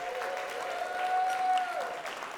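An in-house audience claps and cheers steadily to show love for those watching online, with a sustained high whoop or whistle riding over the dense applause, which swells slightly in the middle before holding on.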